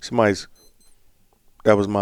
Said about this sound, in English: Watch going off.